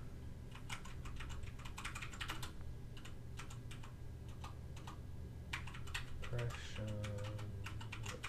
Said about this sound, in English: He's got one of those clicky keyboards, so...